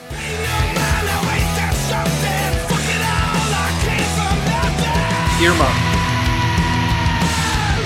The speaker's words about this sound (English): And then when it just goes full on hard rock at the 3 minute mark, it's like a minute to a minute and a half of just, you know, melting your brain.